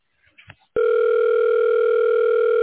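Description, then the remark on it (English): A few faint clicks, then a loud, steady telephone tone that begins abruptly and drones on without a break, like a line connecting before the call is answered, heard when calling the phone number printed on a business card, before a voicemail greeting picks up. “But if you didn't call that phone number, this is what you would have heard if you called that phone number.”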